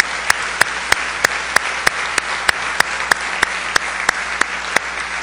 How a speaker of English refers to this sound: Church, can we applaud God's move today? Can we just applaud God today?